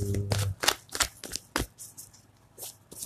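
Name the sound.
shuffling cards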